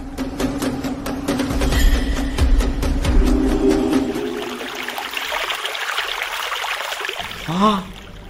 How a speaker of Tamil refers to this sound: தண்ணி, தண்ணி கட்டடத்தை சுத்தி தண்ணி. ஓ, உள்ள நுழையவே முடியலையே.